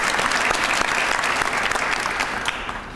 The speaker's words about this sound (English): Now I'm going to introduce the members of the Board of Directors, and you could hold your applause until all of them have been introduced.